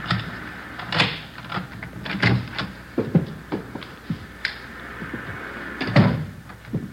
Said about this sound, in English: This one here. There's a front door key. See if you can work it. I know how it works. You go ahead and open it. All right.